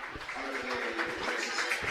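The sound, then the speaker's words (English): A crowd of Kilkenny supporters at UPMC Nolan Park applauds steadily as number 2, Mikey Butler, is substituted off for Conor Delaney, a dense patter of many hands clapping at an even level throughout, with no voices standing out. “Yeah, Conor Delaney, Darren's own club man, is in for Mikey Butler, who comes off to a round of applause by the Kilkenny supporters here at UPMC Nolan Park, and rightfully so.”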